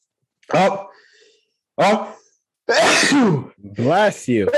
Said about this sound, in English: Those are powerful sneezes. Yeah, but I might have to lower the volume on those. Those were those were a hunk of sneezes.